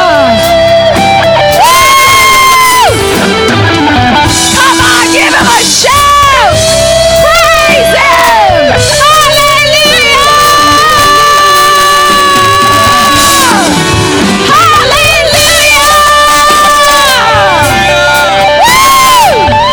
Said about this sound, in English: shouting and praising God.